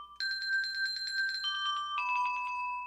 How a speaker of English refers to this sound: Sounds like whoever's running the bells really likes that sponsor.